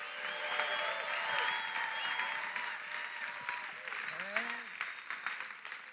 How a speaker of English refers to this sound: Give the Lord a clap and a shout if you could believe that.